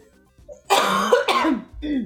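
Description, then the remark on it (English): A person who is getting over a cold coughs two harsh, raspy times in quick succession, fairly loud, then lets out a shorter throaty rumble like clearing the throat. No one speaks. “I'm coughing all over the place because I'm just getting over a cold.”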